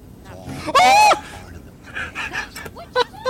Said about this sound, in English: screaming. After seeing a demon.